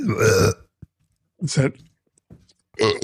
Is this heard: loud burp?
yes